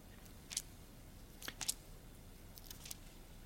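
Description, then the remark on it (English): Soft, papery rustles of Bible pages being turned to Acts chapter 11, several quick crinkly swishes scattered irregularly over a few seconds, faint against a low background hum with no talking. “I love to hear those Bible pages turning.”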